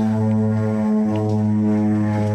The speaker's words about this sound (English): Hello? You have light airplanes flying overhead